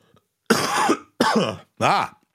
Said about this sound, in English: I swear to God, I might as well smoke cigarettes the way that the smoker's cough is going through this house.